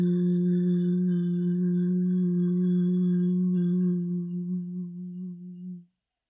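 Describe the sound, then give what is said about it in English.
A single steady, low hum sustained for nearly six seconds, fairly loud, its pitch holding constant before it wavers slightly and fades out as the breath runs out; a hum made with closed lips on the exhale during a breathing exercise. “And exhale. Hum.”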